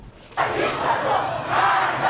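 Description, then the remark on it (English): A large protest crowd in Iran shouts together in a loud, sustained roar that starts abruptly, dips slightly, then swells again, with many voices blending into a chant-like din. “Let me play you this clip and we'll hear some of this protest going on in Iran right now.”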